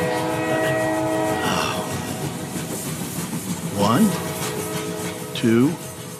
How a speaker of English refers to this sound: Ooh, cool horn.